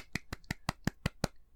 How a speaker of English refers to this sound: Doesn't deserve a clap, really. Yeah, that wasn't me wanking or anything. That was me clapping.